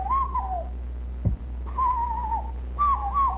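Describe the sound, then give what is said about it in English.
Three hollow, breathy calls whistled through the hands, each a falling two-note phrase mimicking a cuckoo, spaced evenly, with a brief knock between the first two and a steady low hum throughout. “You notice it does sound like a cuckoo? Listen.”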